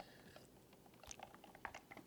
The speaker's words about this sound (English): Sip of water, then I'm ready, I promise.